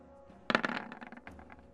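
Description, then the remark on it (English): Dice clatter onto a hard table with a sharp initial hit, then a quick series of rattling bounces that taper off over about a second, fairly quiet; the roll totals 24. “That was kind of a scary dice there.”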